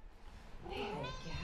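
A long-legged, tabby-and-white male domestic cat, a stray found on the streets of Sydney, Australia, lets out a single drawn-out meow, rising and wavering, over a faint low background hum with no one talking.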